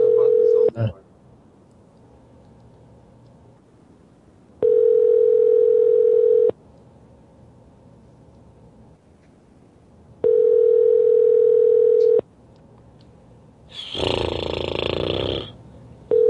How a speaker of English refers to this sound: I don't like the sound of the phone ring today. I want results, damn it.